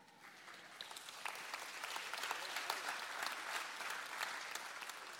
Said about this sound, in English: You clap for me, but James said it. I didn't.